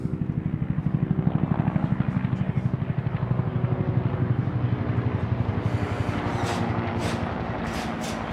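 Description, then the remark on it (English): A blue and white helicopter thunders overhead, its rotor chopping in a fast, steady pulse that stays loud throughout, with faint hissy bursts toward the end. “Let's see if you can hear this helicopter coming.”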